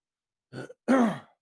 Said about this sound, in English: Damn, clear my throat, sorry about that.